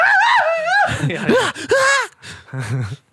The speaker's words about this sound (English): That's my wailing scream I like to put in the background of stuff whenever there's chaos.